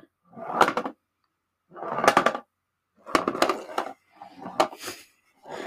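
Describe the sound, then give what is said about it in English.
A small collectible test tube with a tiny figure inside, cylindrical and a bit thicker than a pencil, rolls back and forth inside a box, making five rumbling, rattling bursts with brief pauses between them, each ending in a sharp knock. No one speaks. “I will allow you to roll the thing in the box.”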